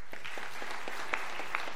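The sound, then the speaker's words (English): An audience claps to show they have seen the TV show This Is Us, a dense, steady patter with a few sharper individual claps standing out near the end, with no voices over it. “will you clap if you've ever seen the show on TV, This Is Us?”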